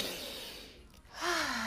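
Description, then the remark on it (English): A deep, airy breath drawn in, a brief pause, then a louder exhale that carries a faint voiced sigh at the end. No one speaks. “Inhale and exhale.”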